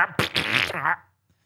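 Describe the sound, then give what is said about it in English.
A cat's single buzzy, wavering fart lasting about a second, fairly loud, with a sputtering start before it trails off into near silence. “Oh, yeah. Farted. A cat went.”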